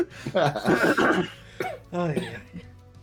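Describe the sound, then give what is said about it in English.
A burst of hoarse, voiced coughing, a long rough fit followed by two shorter wheezy coughs with a strained, almost whinnying pitch. “Everyone just have a little cough break.”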